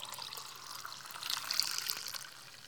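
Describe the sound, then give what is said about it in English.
Liquid pours steadily into a cup, a soft continuous trickle that swells briefly in the middle before easing off, quiet with no voices. “And in the same way, he took the cup. And again, he gave thanks to the Father in heaven. And then he poured it out.”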